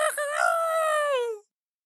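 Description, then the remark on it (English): A person imitates a rooster crowing: one loud, drawn-out vocal cry with a rough opening, a steady bright tone that sags downward at the end, then silence. “The next day, the cock crows.”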